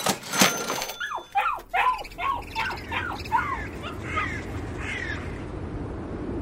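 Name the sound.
dogs barking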